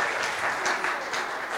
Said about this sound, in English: Everyone give him a clap. He did so well.